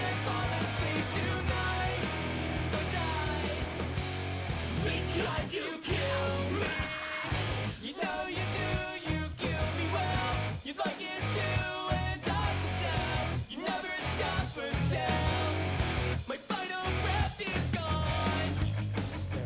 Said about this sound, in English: This is early 2000s emo.